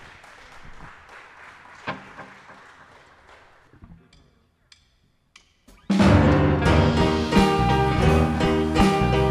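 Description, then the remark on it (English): A crowd claps and cheers for a few seconds, the applause thinning and fading into near silence before a loud band abruptly kicks into a song. “You guys want to give a huge round of applause?”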